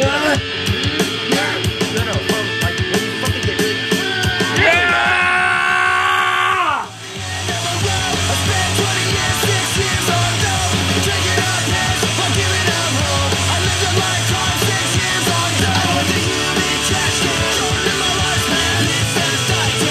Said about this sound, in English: The yell. No. I can do it better than you. No, you can do it better than me. The yell.